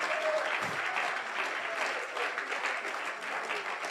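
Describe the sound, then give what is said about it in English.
A crowd of people clapping their hands to magnify the Lord in steady, dense applause, loud and sustained throughout with no break, no single clap standing out from the mass. “Why don't you clap your hands one more time and magnify the Lord?”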